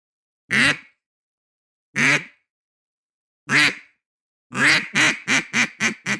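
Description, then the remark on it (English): A duck call blown loud: three single, evenly spaced quacks, then a quick cadence of about six shorter quacks in a row, with no talking. “I'm going to start off with a quack, okay?”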